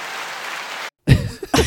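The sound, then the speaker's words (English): A short burst of canned applause sound effect, played by pressing an applause button, a steady dense clapping wash that cuts off abruptly after under a second, followed by a brief pause and some vocal noises. “Did I press the applause button?”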